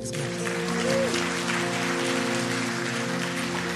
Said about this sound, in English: Also, yeah, go ahead, clap.